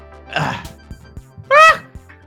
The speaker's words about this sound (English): I have a sneeze.